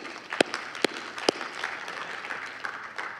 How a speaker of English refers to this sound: Yeah, you can clap for God.